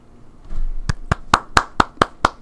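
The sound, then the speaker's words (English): A small group claps in slow, steady unison after a talk, about eight sharp claps evenly spaced, fairly loud, with no talking over them. “Oh, we're not clapping?”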